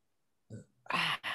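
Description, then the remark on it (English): A short, low, throaty burp, followed by two loud, breathy bursts that sound like an exhale or a laugh. No words are spoken. “Got the burps.”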